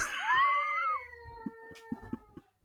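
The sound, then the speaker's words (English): A child's drawn-out, wavering scream rings out for about a second from another room, followed by a few soft knocks and thumps. “The kid keeps fucking screaming,”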